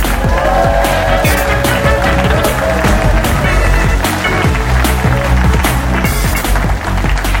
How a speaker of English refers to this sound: Thank you, and they applauded. Even though I went off, they applauded right till the middle.